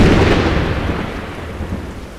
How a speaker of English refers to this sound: You gave me thunder. I somehow made thunder louder. Yeah. That was good. That sounded really good in the can. You can insert real thunder, right?